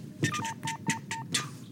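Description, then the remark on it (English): A quick run of about five short telephone dialing tones, evenly spaced and fairly clear, set against crackly bursts of noise that swell with each tone. “Nobody's alive down there to pick up the phone.”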